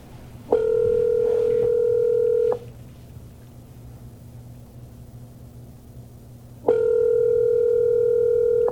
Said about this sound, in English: This is ringing for an absurd amount of time.